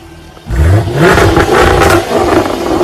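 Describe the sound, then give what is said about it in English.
After a brief hush, a sports car engine roars to life, revving loudly with a rising, throaty growl that holds steady to the end. “I ain't got no license. But I still drive this sports car, bitch.”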